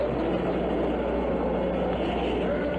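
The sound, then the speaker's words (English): The rocket engines of the Apollo 11 launch roar at liftoff in a dense, steady, rumbling wall of sound, heavy in the low end and unbroken for the full few seconds, with no voices over it. “All engine running. Liftoff. We have a liftoff. 32 minutes past the hour. Liftoff on Apollo 11.”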